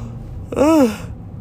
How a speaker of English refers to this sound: Excuse me while I yawn there.